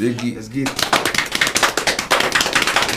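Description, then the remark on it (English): A brief voice-like tone opens, then a fast, steady drum roll of dense rapid hits sustains loudly for over two seconds, with slight swells in intensity. “We gotta go and get him, man, the drum roll, man.”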